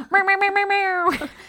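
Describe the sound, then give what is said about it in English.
A human voice lets out a strained, nasal wail like a yowling cat in heat, stuttering in a few quick pulses before stretching into one long, loud cry that breaks off abruptly. “I just sound like a mating cat when I try.”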